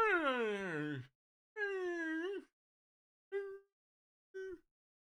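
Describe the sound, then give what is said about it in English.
A person imitates a dog left in an office barking and moaning: a long falling wail, then a sustained moan, followed by two short whimpering yelps, fairly loud with pauses between. “Point number two, don't leave your dog in the office with your employees if your dog is always fucking barking and moaning and...”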